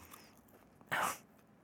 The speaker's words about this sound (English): Oh, that was me breaking the cookie. Did you hear it?